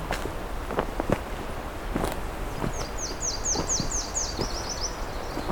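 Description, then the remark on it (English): A Nashville warbler, one of two present, sings a high, thin two-part song, a variation on the usual, a series of sweet repeated notes running into a quicker trill, over crunching footsteps and rustling leaves. “So we've got a Nashville here. A little bit of a variation on the usual.”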